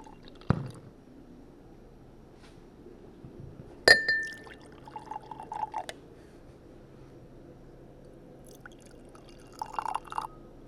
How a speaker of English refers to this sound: And does it matter how you pour that? Well, it kind of depends on the beer